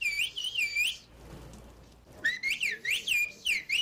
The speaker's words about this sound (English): there is a language in Turkey that is whistled. True. Yeah, that's true. Oh, that's amazing. Yeah, there's a whistled language. There are no words. It sounds like very excited birds talking to each other.